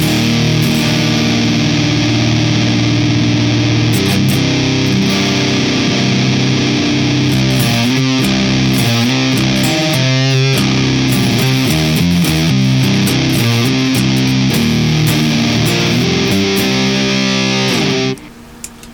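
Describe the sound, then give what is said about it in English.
Loud, distorted electric guitar played into a Kraken amp, with drone level and gain at noon, drone tone at 10, gazer level all the way up and gazer drive at 8 o'clock: sustained chords with thick harmonic buzz and a few quick single-note runs, ringing steadily before cutting off abruptly near the end. “The gazer level is all the way up, and the gazer drive is at 8 o'clock. Into the Kraken, this is what it sounds like.”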